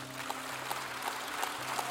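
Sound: audience clapping hands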